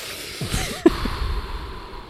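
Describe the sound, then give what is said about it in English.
A person imitates the whistling snore made while wearing an anti-snoring device in the nose, making breathy, wavering whistle tones with a brief click partway through. It's fairly quiet, with no speech. “It was like a whistle.”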